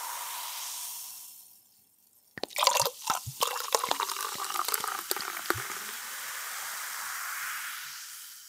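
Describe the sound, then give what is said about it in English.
Alcohol being poured into a glass, a splashy, gurgling stream with bright clinks and drips. Steady background hiss before the pour, with no voices. “And I think to show everyone that I mean it about the party, I want someone to pour some alcohol to show that it's fine to get your knees up and celebrate.”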